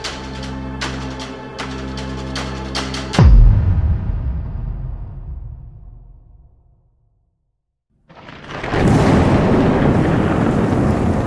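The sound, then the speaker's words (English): A heavy thunderclap booms and rumbles away over several seconds after a droning, tonal opening. After a short silence, a steady wash of wind and rain hisses loudly, blowing in through an open kitchen door that leads outside. No one speaks. “Wind and rain are blowing in through the door in the kitchen that leads outside as thunder strikes”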